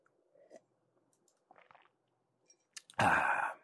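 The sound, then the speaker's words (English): Someone swallows a sip of coffee just as a microphone is unmuted: faint wet mouth clicks, then one loud, gulping swallow near the end. No one speaks. “Sorry, I muted the mic to take a sip of coffee and then unmuted the mic just as I was swallowing the coffee.”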